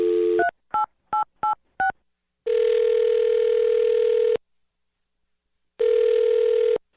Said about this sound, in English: All right. Well, I'm about to dial her phone number and let you make your Awkward Tuesday phone call.